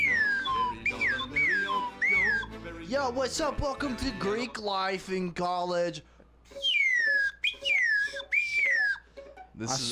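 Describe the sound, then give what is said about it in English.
A slide whistle swoops up and down in repeated glides, loud, playing over and between a man's talking, with a bright descending run of slides near the end. “Yo, everyone knows the number one part of Greek life at college police. Is the slide whistle.”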